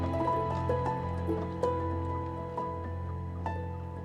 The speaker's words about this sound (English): Our lanterns disclosed the top of a flight of stone steps, dripping with some detestable ichor of the inner earth and bordered by moist walls encrusted with nitre.